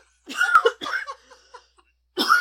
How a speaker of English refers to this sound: God damn, I really wish I'd stop coughing.